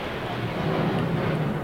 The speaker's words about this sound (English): What's that? Can you pick the sound of the engine? Sounds like an F-18 to me.